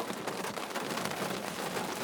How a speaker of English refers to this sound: Or, let me close this fucking window because it is raining.